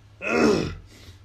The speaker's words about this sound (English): Let me clear my throat real fast.